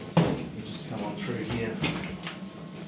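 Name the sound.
door being opened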